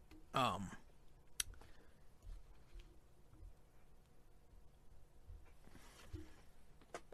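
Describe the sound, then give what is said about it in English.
Scattered clicks on a malfunctioning computer keyboard tap out irregularly, with one sharp louder click early on, over a low murmur and a brief burst of indistinct voice; someone is typing to look up a basketball season series score. “My keyboard's all screwed up. I was going to see... I was trying to find out what the score...”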